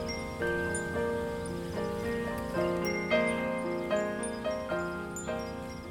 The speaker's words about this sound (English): Do you want me to move that wind chime? Do you hear? I kind of like it.